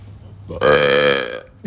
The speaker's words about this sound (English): That's a coffee burp. That's my cold brew.